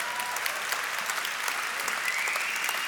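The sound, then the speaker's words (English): Steady audience applause for the young people under 30 standing up in the room, a dense wash of many hands clapping at an even, sustained level without letting up, no voices standing out above it. “Let's first of all clap it up for all the youngsters in the room.”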